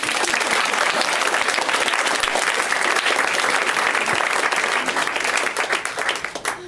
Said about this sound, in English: Well, thanks to this couple. They're very nice. Clap for them.